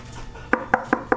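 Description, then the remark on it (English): Four quick, evenly spaced knocks on a tree trunk, each a crisp hollow thock with a resonant ring, rapping out a steady rhythm over a low background rumble. “Guys, stop knocking on these trees.”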